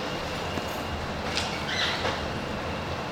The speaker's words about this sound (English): That sounds like a 747 is taking off. I've never heard that sound in this building since we started here. Have you guys? I've never. Is that the air conditioner? Yeah, it is. Is it too loud?